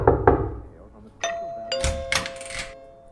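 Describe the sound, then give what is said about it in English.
A doorbell rings with two bright chime tones, ding then dong, each ringing out and lingering. A voice speaks briefly before it, and rustling bursts follow over the fading tone. “Oh, someone's at the door,”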